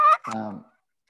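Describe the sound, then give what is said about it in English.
Two short, raspy squawks in quick succession, a sharp high yelp followed by a lower, longer scratchy note, fairly loud: a hen turkey call made by sliding the paddle across a three-sided wooden box call shaped like a mini coffin, used in hunting to draw in males. “Well, yeah, it would be a paddle that you slide across Sort of paddle a three-sided, calls. Sort of looks like a mini coffin. And it squeaks because you can make all the different hen calls with that.”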